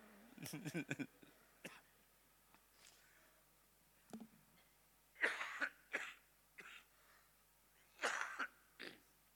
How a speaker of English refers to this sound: Pardon me, I've been having this cough for about a week. It's okay, just a persistent cough, that's all.